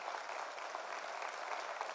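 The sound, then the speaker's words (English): A church audience applauds steadily for Pastor Jesse, a dense, sustained wash of many hands clapping at even loudness throughout, with no voices standing out above it. “Come on, clap for Pastor Jesse.”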